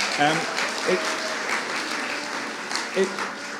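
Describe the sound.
A crowd claps steadily for a few seconds, a dense patter of applause with a few voices calling out briefly over it.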